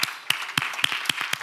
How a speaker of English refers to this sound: Man, I want to applaud right now to our praise team. Right now, come on.